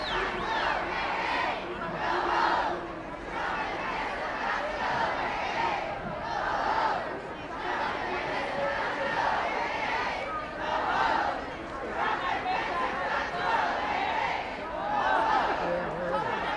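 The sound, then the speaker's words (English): A large crowd at a protest march near Independence Avenue chants and cheers, a dense roar of many voices that swells in rhythmic waves every couple of seconds and never lets up. “Just going to give you a listen to the crowd again.”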